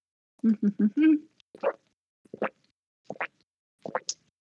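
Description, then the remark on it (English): Loud gulping of water: a quick cluster of throaty swallows, then several separate wet, plopping gulps at a slow, steady pace, each with a rising pitch, with no talking. “Sorry, I'm a loud drinker.”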